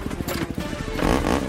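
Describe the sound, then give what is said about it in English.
A motorcycle engine throbs with a steady, pulsing idle, then revs up and rises in pitch toward the end, with no one talking. “I always loved the freedom that a motorcycle gives you.”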